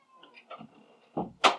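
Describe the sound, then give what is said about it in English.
A cat, Miss Khabibi, gives a few soft, thin meows at the door, then two sharp, noisy bumps follow in quick succession, like something pushing against a door. “She's very upset with us. She said, how dare you try to shut me out?”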